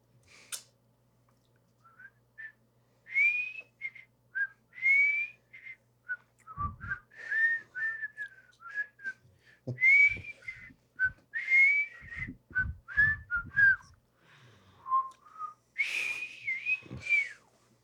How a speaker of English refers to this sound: Gonna whistle now.